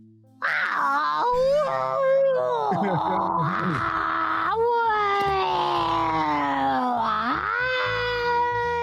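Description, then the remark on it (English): A person imitates a whale call to attract a whale that has broken off from its pod, a long, continuous, wavering vocal moan that slides up and down in pitch, rising into high squeals and dipping low, loud and sustained for several seconds. “You tell me what you do to attract a whale.”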